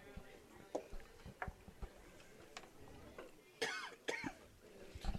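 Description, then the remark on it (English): Two short, harsh coughs burst out, one right after the other, amid a quiet stretch of faint ticking and clicking noises, with no talking. “I found the cough button.”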